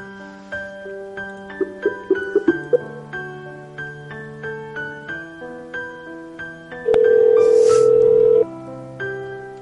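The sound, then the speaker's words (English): Slow, sad, tear-jerking music: soft struck melody notes over sustained low tones, swelling briefly into a loud held chord before settling back. No voices. “This is some fucking tear-jerking music.”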